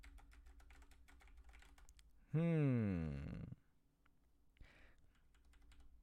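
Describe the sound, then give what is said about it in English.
Rapid, steady clicking on a computer keyboard, briefly interrupted midway by a loud, falling voiced sound before the typing resumes. “I'm just clicking my keyboard.”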